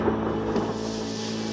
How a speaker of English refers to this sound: There is a boy who is just like other boys, until one night he sees from his window a storm on the horizon.